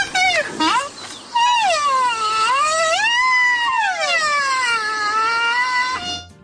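A baby rhino named Frankie, rampaging through a village, gives a long, high, wavering squeal, rising and falling in pitch like a whiny cry, loud and continuous for about five seconds after a short opening squeak.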